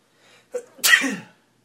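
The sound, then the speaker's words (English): A single person sneezes: a quick sharp intake of breath, then a loud explosive burst of noise that trails off within about half a second. No one talks. “You get a tickle and you got to sneeze, and then you won't sneeze.”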